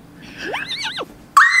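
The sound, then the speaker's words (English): A horse in a video game whinnies once, its pitch sweeping up, wavering, then dropping away over about half a second, followed abruptly by a loud, bright, sustained squeal-like tone. No one speaks. “Oh my God, look at the horse.”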